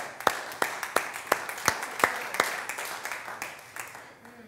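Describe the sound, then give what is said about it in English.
A church audience claps together in a steady rhythm during a sermon, sharp beats standing out over a wash of scattered applause that gradually thins and fades toward the end. “I'll clap for that.”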